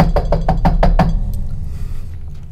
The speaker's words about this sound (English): Knock on the door. Couple hard rasps. 10 seconds go by. 20 seconds. 30. 40. Minute. Knock again.